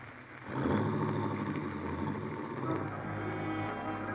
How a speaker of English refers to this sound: You watch Helen's car slip quietly down the road.